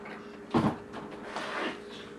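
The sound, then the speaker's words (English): A door is being worked at with effort: a solid knock-like thud, then rattling and scraping as it's pushed and pulled, with no one talking. “Are you having trouble with the door?”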